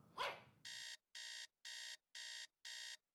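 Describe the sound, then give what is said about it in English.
A morning alarm clock rings in steady, evenly spaced electronic beeps, loud, after a brief dog-like yelp at the very start; no one speaks. “Sound of a morning alarm.”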